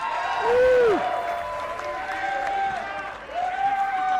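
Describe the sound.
An audience applauds steadily for a few seconds, the dense clapping mixed with whoops and cheering voices rising and falling over it.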